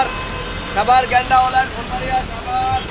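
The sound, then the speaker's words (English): Busy street traffic in Bangladesh with a steady roar of engines and repeated high honks from rickshaws, cars, including many fancy cars, and buses, sounding dense, with indistinct voices mixed into the clamor on a street full of people. “You hear rickshaws and cars. Buses are everywhere. There's a lot of traffic, a lot of fancy cars on the road as well”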